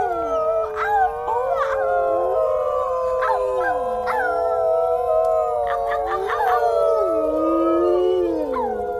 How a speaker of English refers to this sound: Power Dog opened his mouth again to mention the strange cave he and Fetcher had been in before all of this, but he was utterly drowned out by the beginning of the great howl of harmony.